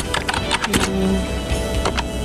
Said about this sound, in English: This is it. It's mostly just typing sounds.